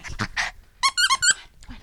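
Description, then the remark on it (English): A female Chihuahua terrier mix plays a fierce game of tug-of-war with her favorite chew toy in the living room of a Covina townhome, making breathy, rough growly noises followed by a quick run of four or five high-pitched squeaky whines and yips, fairly loud, with no talking. “In the living room of this Covina townhome, a Chihuahua Terrier mix is playing a fierce game of tug-of-war with her favorite chew toy.”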